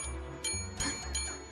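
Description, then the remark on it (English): A small bell rings in three quick, evenly spaced strikes, fairly soft, over a steady low background hum with no one speaking. “do you have your bell ready?”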